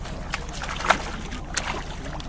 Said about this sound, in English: Cutting into the motor sounds of our boat, some fish jump out of the water, making a cracking sound.